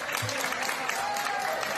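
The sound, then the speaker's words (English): A crowd of nurses and doctors, lined up in a hospital, claps steadily for a 43-year-old COVID patient leaving after 106 days in hospital: a dense, continuous patter of many hands at moderate loudness, with a faint tone and murmuring voices mixed underneath. “Nurses and doctors lined up. Gave him a huge round of applause on his way out.”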